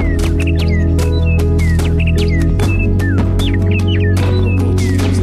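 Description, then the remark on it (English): Birds sing in a lively stream of short chirps and falling whistles, repeating every second or so over a steady low droning hum. No one speaks. “They sing it over us and around us in their songs and in the songs they no longer sing.”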